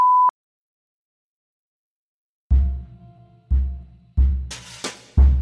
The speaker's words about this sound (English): If this were written only to appear on the page, I might let the slur stand in quotation marks, but as I do not wish to offend or disturb anyone with audio of the spoken word, I will be censoring the racial slur with a beep.